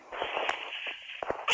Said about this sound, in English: Oh. Sorry, I sneezed.